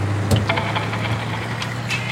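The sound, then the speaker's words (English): A car engine hums steadily, a low continuous drone with faint rattles and clicks on top, no voices present, as the car is driven toward San Luis Obispo on a road trip. “jump back in the car.”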